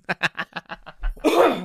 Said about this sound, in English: Sorry, excuse me. Since I've had COVID, I just can't get rid of this cough.